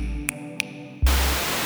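A low electronic hum with two short beeps gives way to loud, steady radio static hiss that abruptly fills the whole sound for the final stretch, with no voices present.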